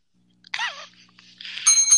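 A bell dings twice, first with a wavering, ringing tone and then a brighter, sustained high ring near the end, fairly loud and close with no talking.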